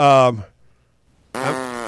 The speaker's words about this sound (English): You have that, I love how they, that fart sound queued up. Can you play that? Because that's what I just heard you read. You don't actually have to play it.